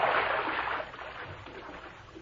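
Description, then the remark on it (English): Sloshing splashes of someone in boots wading out through shallow water to retrieve a small model ship, loudest at first and then settling into softer swishing. No voices are heard. “I'll wait out and get it. Let me do it, Tom. My boots is higher than yours. The water's kind of shallow.”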